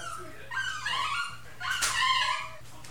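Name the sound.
dog whimpering and yipping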